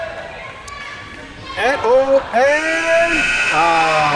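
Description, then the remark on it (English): A voice imitates the halftime buzzer at a Pistol Shrimps basketball game, with the score 16-8 to the Pistol Shrimps, giving a loud, nasal, bleating drone: a couple of short wavering bursts, then a longer sustained buzz with slightly bending pitch. “That buzzer means it's halftime.”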